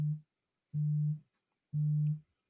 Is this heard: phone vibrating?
yes